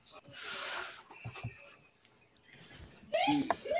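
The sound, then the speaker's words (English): A single sharp sneeze bursts out, a breathy hiss-like blast, followed by a brief quiet stretch and then people starting to talk. “Bless you, baby.”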